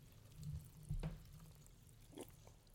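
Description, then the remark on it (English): Sparkling wine is poured into a glass, a soft trickle with faint fizzing and a couple of brief splashy bursts, quiet and with no talking. “We're gonna enjoy a couple sips of some really nice bubbles today.”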